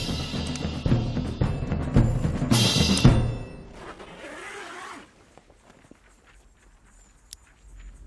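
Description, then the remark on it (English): Rustling and shuffling lead into a fast, loud rasp of a tent zipper being pulled, zipped from the inside. Fabric movement fades after it, leaving near silence with a few faint clicks. “It zipped from the inside.”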